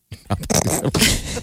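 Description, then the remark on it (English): A loud burp rumbles out for over a second, throaty and ragged with a few sputtering bursts, standing alone without any talking. “You're burping.”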